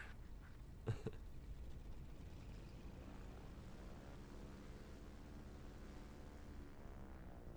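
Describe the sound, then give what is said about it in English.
A steady, low droning engine hum of a flying wing aircraft in a movie fills the whole stretch, with a brief sharp knock near the start and tones sliding slowly across the drone; no one speaks. “When I saw this as a kid, I kind of thought that they made up that flying wing for the movie.”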